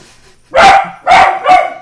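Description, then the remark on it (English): A dog on door patrol gives three loud barks in quick succession, each one a sharp, full-throated burst with a strong midrange tone, separated by brief pauses, with no one speaking. “Door patrol at it again. Paw Patrol. Paw. Again, neighbors.”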